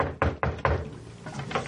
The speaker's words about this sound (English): Yeah. I'm going to go down and knock on his door. Okay. How about you knock?